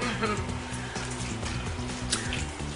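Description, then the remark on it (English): Evaporated milk pours from a can through holes cut on both sides, a steady trickle for a few seconds, a soft liquid glugging over a low, continuous background hum. “For those of you who like don't really know how to cook, all you gotta do is cut a hole on both sides and it'll make it pour.”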